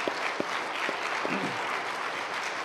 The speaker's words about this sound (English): These two just got engaged, so let's give them a round of applause.